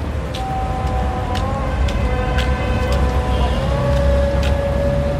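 Dense street traffic in Cairo, Egypt rumbles steadily, with engine noise and scattered horn blasts, while a siren-like tone wails and shifts in pitch above the din.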